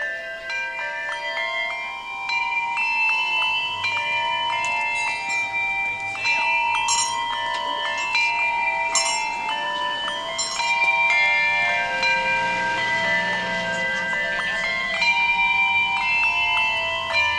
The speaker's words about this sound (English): Our next musical moment comes as a quaint town square performance, as the Stars Hollow Bell Choir rehearses the First Noel.